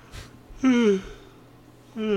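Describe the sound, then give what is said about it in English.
A person yawns: a quick breath in, then a drawn-out voiced sigh that slides downward in pitch, followed by the start of a second yawn. “I'm yawning on the podcast.”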